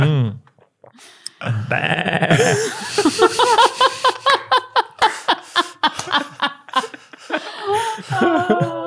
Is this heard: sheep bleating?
yes